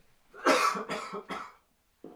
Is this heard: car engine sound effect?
no